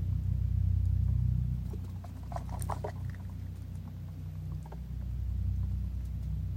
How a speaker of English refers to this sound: Hum of a plane.